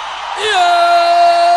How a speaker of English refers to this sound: If you are in this auditorium, let me see your shouting.